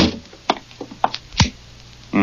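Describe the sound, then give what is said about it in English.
A door at McVeigh's house being closed: a few sharp clicks and rattles from the handle and latch, then a solid thud as it shuts, with no voices. “Well, close the door.”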